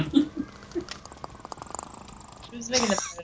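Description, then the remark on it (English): A person imitates an alien hunter creature's clicking, making a rapid, throaty rattle of clicks for about two seconds, close to the microphone, with breathy vocal noises before and after. “This is my best attempt at a predator noise.”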